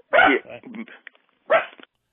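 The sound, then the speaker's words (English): A dog suddenly needing to go out barks twice, loud, about a second and a half apart, with softer whiny vocal sounds trailing after the first bark. “Yep, the dog is now suddenly needing to go out.”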